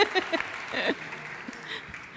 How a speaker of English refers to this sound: I'm the associate vicar, and I've realised I've been here a year this weekend, so it's lovely. I wasn't expecting a round of applause at that point.